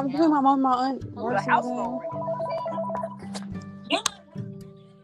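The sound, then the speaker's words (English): A landline house phone rings with a warbling electronic trill, moderately loud, mixed in with voices and other tonal sounds across the few seconds. “When people be on the phone with me and hear my phone ring, they be like, "What's that?" And I'm like, "The house phone."”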